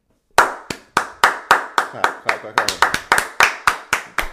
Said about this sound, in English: Clap. What are you clapping for?